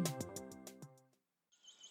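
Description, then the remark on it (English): A short plucked musical phrase with evenly spaced notes fades out, then after a brief pause come faint, thin, high-pitched chirping calls of young golden eagles. “Young golden eagles.”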